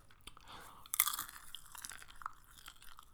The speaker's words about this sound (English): I'm eating some kettle corn or a popcorn